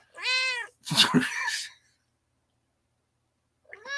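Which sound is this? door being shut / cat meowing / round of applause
cat meowing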